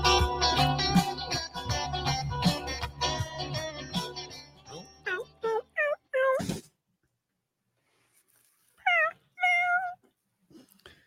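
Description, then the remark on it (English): Clear cat meows from a mayonnaise commercial in a quick string of several short cries, then a pause and two more drawn-out meows. A busy musical stretch comes before them. “The mayonnaise commercial with the cats.”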